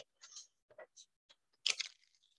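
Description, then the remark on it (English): Cards being shuffled: a few quiet, irregular papery snaps and taps, then a brief, louder riffling burst that trails off. No one speaks. “Apparently, I cannot shuffle today.”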